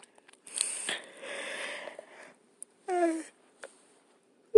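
A long, breathy yawn: an airy, drawn-out inhale with a faint moaning tone, then a brief voiced groan and a few soft breath sounds before silence.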